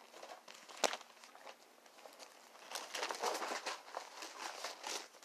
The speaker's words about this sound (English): Listen to the pages turn. Doesn't that sound good? If it's the word of God, it should sound good to the hearer.